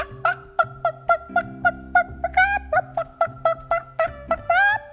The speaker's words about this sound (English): At dead of night, the two bad men opened the coop and snatched the hen. But the fat red hen began to cluck.